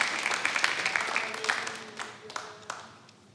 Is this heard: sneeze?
no